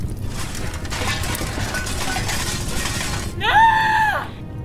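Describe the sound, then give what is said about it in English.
An upstairs window's glass shatters and crunches in a sustained, gritty spray of noise for about three seconds, followed by a short, loud, high-pitched wailing tone that bends downward and fades. “It's just a broken window upstairs and some papers blowing around.”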